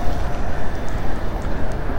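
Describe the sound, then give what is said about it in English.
City mall buses driving up and down the 16th Street Mall in the morning: a loud, steady low rumble of engines and road noise that swells slightly now and then, with no voices. “People heading to work in their business outfits. Mall buses going up and down.”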